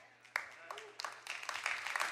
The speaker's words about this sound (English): I wasn't egging for a clap there. I just wanted a sip of water.